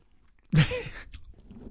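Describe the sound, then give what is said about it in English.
A loud, crunchy bite into a wafer cookie, followed by a second or so of softer chewing and mouth noises. “Get that chewing and all that in there.”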